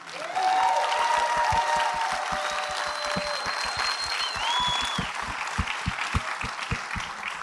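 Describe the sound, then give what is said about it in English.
An audience claps steadily for several seconds, a dense wash of many hands with some sharper individual claps and a few high whistles cutting through near the start. “I love hearing that laughter and that queer joy, and people were clapping for you.”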